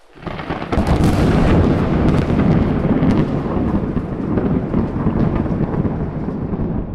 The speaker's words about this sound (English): Oh, you're supposed to say it while the thunder's rolling. I didn't really have a chance. It started pretty quickly, and I panicked.